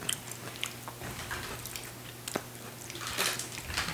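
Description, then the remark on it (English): Crunchy chewing of a crunchy, very garlicky snack, with repeated sharp crackles and bites over a low steady hum, no talking. “A little crunchy. That's nice. Very garlicky.”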